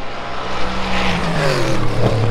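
A loud LMP3 (Le Mans Prototype 3) race car engine roars steadily, its pitch dropping and then rising sharply as the car passes by, with no voices present.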